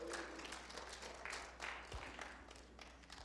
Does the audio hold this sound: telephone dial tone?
no